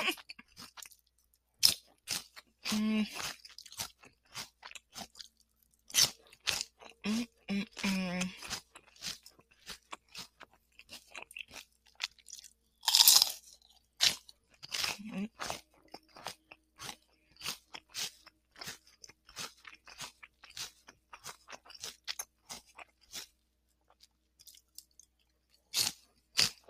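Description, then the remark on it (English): Crisp crunching and chewing of a big piece of crunchy snack, with repeated sharp bites and a few louder crunches scattered across a steady, irregular rhythm of mouth sounds. “That one was crunchy.”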